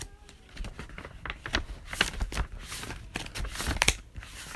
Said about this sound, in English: Sorry, I'm looking through my notes, so if you hear something shuffling, that's probably my journal.